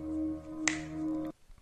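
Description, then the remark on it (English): A woman's single crisp finger snap cracks out over a steady, low humming drone, which cuts off abruptly about half a second later, leaving faint rustling. “She snaps her fingers.”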